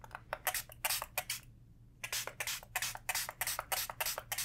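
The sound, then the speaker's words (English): A spray bottle spritzes water onto a person's face in quick, hissy bursts, a rapid run of pumps, a short pause, then another steady series, over a faint low hum with no talking. “I'm gonna take this spray bottle and spray down your face one more time and wipe it with a towel, okay?”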